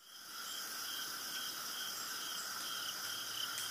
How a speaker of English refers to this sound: Crickets. Love it.